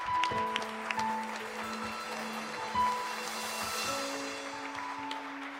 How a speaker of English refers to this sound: Clap your hands one more time for Jesus.